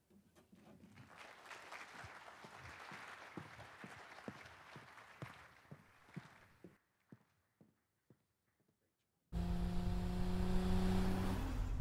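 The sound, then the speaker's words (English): A car engine roars in loudly near the end of a Super Bowl TV ad for Tide, a steady harmonic growl, after several seconds of rhythmic clattering and a brief lull of sparse clicks. “Just a typical Super Bowl car ad, right?”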